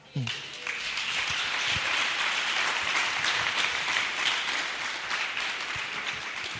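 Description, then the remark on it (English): A crowd breaks into sustained applause, a dense, steady wash of many hands clapping that holds at an even loudness for several seconds before easing slightly, clapping for the writer of an article being read aloud. “Oh, you should clap for the writer.”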